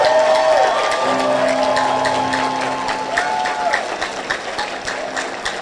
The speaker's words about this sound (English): Let's appreciate him with a clap offering.